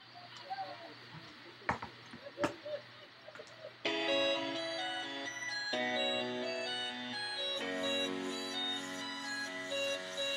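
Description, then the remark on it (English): A phone rings with a loud electronic melodic ringtone, its sustained tones stepping through several notes, preceded by a few seconds of faint rustling and sharp handling clicks. “I got all sorts of things going on in my phone's going off.”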